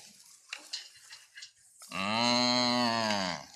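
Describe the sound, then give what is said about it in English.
A single long, loud cow moo, deep and droning with a slight rise and fall. It follows a second and a half of faint clinking and rustling. “What might they have said if the donkey, the cow, the sheep, and the dove had been able to tell the story of the lowly stable strewn with hay.”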